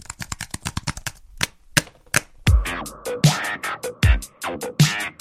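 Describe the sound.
Rapid bursts of clacking keystrokes, then a short lull followed by heavier, evenly spaced key strikes with low thuds, like typing on an old keyboard or typewriter, clear with no voices.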